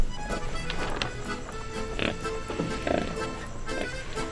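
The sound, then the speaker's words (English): A pig grunts in its sleep at night while having a nightmare, a series of short, snorting bursts at irregular intervals, with a low rustling background and no one speaking. “Sometimes we discover pigs having nightmares.”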